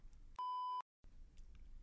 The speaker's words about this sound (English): I'm not giving any shout outs to any companies that are not sponsoring me that sell sex toys. Well, then, beep.